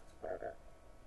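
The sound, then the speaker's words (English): A quick, croaky rasp from someone's throat, two short guttural pulses close together that sound a bit like a frog, over a quiet background. “Is that a frog? No, that was a little Jeff down my throat making noise.”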